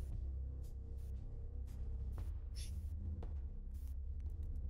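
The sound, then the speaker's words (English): Deep, rolling thunder from a storm outside rumbles steadily throughout, a low continuous roar with faint crackling bursts scattered over it, heard alone with no one talking. “You hear this lightning and then the thunder outside.”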